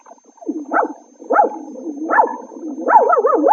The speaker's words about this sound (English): Oh, Jack, look at that cute little dog.